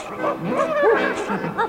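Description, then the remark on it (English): Several dogs bark and yip in a rapid, overlapping burst, fairly loud, with pitched yelps rising and falling against a busy background for under two seconds, as a chorus line of dogs joins a show finale. “And now for their finale, they're joined by two huge chorus lines, one of dogs and one of ponies.”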